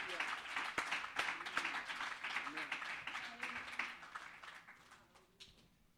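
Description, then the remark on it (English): An audience clapping hands together to give God praise, in a dense, steady patter of many claps, with a few scattered voices mixed in, gradually thinning and fading out toward the end. “One more time, clap your hands.”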